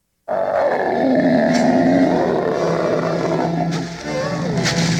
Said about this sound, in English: Toxie then growls and then talks to O'Clancy.